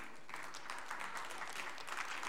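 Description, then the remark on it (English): An audience breaks into steady applause, a dense wash of many hands clapping at an even loudness for a couple of seconds, with no voices rising above it. “Don't clap, I ain't got time.”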